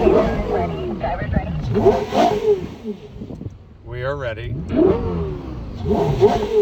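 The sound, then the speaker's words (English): A high-revving Porsche Carrera GT sports car engine climbs and falls in pitch through a couple of sharp revs, loud, with people talking before and after. “Yeah, the CGT sounds just ridiculous.”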